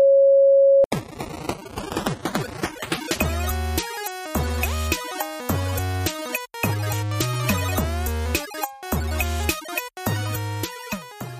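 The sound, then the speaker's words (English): A single steady, mid-pitched beep lasting under a second, then a burst of electronic music with rising sweeping tones and a pulsing, stop-start bass line. No one speaks. “at the time of the beep, the episode number will be 78.”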